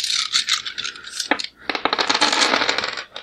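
During a tabletop role-playing game, a handful of dice clatters and rattles across a hard tabletop in a dense burst of bright clicks, a brief pause, then a second longer tumble that gradually settles; the roll scores a single hit.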